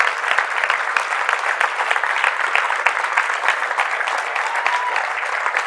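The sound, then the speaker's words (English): A large standing audience at a Christian gathering claps steadily and continuously, a dense wash of many hands at an even, sustained level with no pauses, filling the whole stretch. “Stay standing and stay clapping.”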